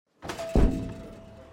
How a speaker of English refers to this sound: you're banging your head against our store window.